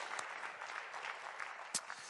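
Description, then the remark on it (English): A church audience applauds for the Lord after the worship, a steady wash of many hands clapping at an even level, with a few sharper individual claps standing out and no voices over it. “Let's give a round of applause to our Lord.”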